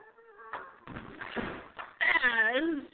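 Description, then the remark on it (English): The old wooden door of an old wooden shack creaks slowly with a long, wavering groan on a very dark, humid night with still air and no breeze. A quieter creak comes first, then a louder, drawn-out one near the end, prominent. “Hear the creaking of the old wood door.”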